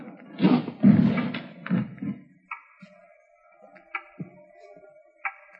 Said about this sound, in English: It's a loud clock, ain't it?